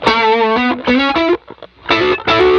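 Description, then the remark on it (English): A heavily distorted electric guitar played through a distortion pedal plays loud sustained chords in short bursts with a brief pause, the tone thick, saturated and muddy with a fuzzy, compressed edge. No one speaks. “That starts to get muddy in a way that I'm not really that into. I don't want this to feel like fuzz.”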